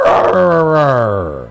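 A dog gives one loud, drawn-out cry that slides slowly downward in pitch and fades at the end, more a sustained howl than short barks, with no talking.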